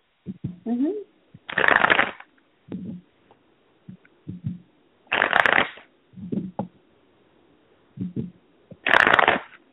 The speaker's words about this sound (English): Just one moment while I shuffle, and I will be right back with your reading.